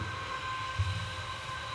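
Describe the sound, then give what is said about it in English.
A low, steady rumble of a train passing in the background, faint and continuous with a slight swell partway through, and no voices. “I can just hear a train in the background coming past.”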